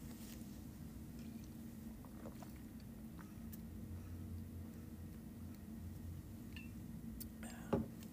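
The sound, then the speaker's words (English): A steady low hum with faint mouth clicks and small wet noises as someone sips water, then a brief, louder slurp-like burst near the end. No one talks. “But I'm just going to take a sip of water real quick, and then we'll get to the Butler game in a moment.”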